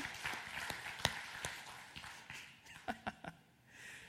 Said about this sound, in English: Yeah, we can throw out a clap.